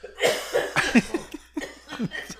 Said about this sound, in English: got to clear his throat.